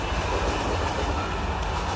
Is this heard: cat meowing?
no